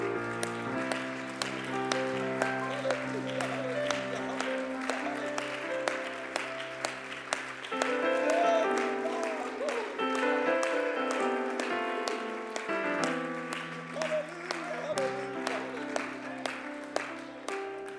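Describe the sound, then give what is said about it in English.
An audience claps their hands in a steady rhythm over sustained organ or keyboard music, the claps loud and continuing throughout with the music swelling beneath, a hand clap given in praise of Jesus. “Let's give him a hand clap in this place.”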